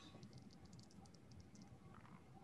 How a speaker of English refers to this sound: Go ahead and roll a dice. You're looking for 50 here.